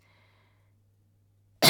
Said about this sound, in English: watching as his patient coughed again.